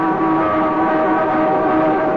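Steady drone of cars on a street, a continuous engine hum with a faint tonal whine that holds at an even level throughout, without any distinct single vehicle passing by.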